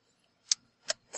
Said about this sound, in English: A clock, ooh, man. You always have to advertise something with an old school clock on it.